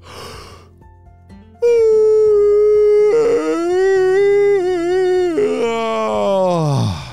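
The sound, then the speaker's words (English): A sleepy dingo lets out a long, loud, drawn-out yawn as the sun sets, a wavering whine-like moan lasting several seconds that dips and trails downward at the end, with no talking. “The sun was starting to set, and the dingo started to yawn.”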